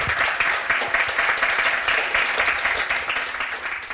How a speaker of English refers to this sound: Can you give a massive round of applause to our three guests?